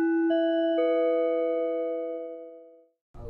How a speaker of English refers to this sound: Well, you heard the bell. That means that it's time for segment five